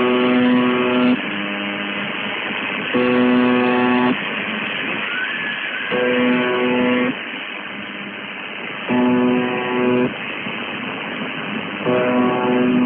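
The buzzer of shortwave radio station UVB-76: a harsh, low droning buzz in roughly one-second bursts every few seconds over constant hissing static, with a faint rising cry, a woman screaming, briefly heard between the buzzes.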